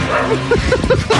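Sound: street dog barking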